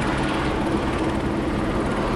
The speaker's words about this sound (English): What are these guys doing? You figure in this day and age they'd be using drones instead of big helicopters. That kind of gives them away, does it?